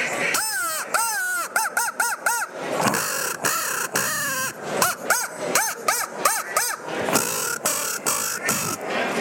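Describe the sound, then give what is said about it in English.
A handheld crow call blown to imitate crow caws, a call used for locating and hunting crows: loud, raspy calls in quick bursts of three or four, repeated several times with short pauses between. “I'll do a demo here on a crow call.”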